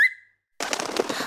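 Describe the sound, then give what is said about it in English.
A short bird chirp, a brief pause, then a burst of rapid, fluttering wing flaps as a bird takes off to fly a letter to a courier, fairly loud, with no voices. “Birds like Billy are great at delivering letters because they can fly.”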